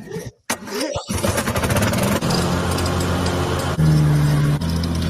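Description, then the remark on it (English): A lawnmower with a Briggs & Stratton 600cc motor sputters to life, then settles into a loud, steady buzzing drone with a low rumbling hum, its pitch rising slightly for a moment near the end. “I know y'all probably curious about what kind of power plant I got in this luxurious cutting machine. This is a Briggs & Stratton 600cc motor.”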